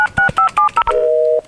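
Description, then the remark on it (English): Six quick two-tone telephone keypad beeps in an even rhythm as someone dials a phone, followed by a longer steady tone, clear with no voices. “Give me the phone. What are you doing? Calling Joe.”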